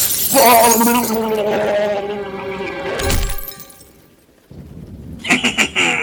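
A sustained, wavering tonal wail gives way to a sudden crash as a man throws himself out of a window, then a burst of bright, crackling shattering window glass with scattered high tinkles near the end.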